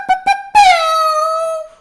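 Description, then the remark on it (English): A voice imitates an air horn: two short, quick blasts followed by one long, loud, high-pitched blare that slowly sags in pitch before cutting off. “Can we hear your a cappella air horn, please?”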